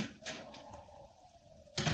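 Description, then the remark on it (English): A sun porch door is worked open with a few light rattling clunks, then shut with a louder, fuller thump near the end, with no voices. “You've probably got at least an hour, but whatever you do, don't leave that door open.”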